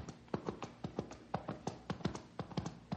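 A horse's hooves clip-clop in a steady, quick rhythm as it approaches carrying a rider, each hollow knock distinct and moderately loud, with no voices over them.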